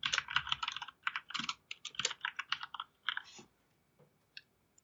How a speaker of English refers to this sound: Somebody don't like his typing? I just muted myself so you guys can't hear the rest of it now.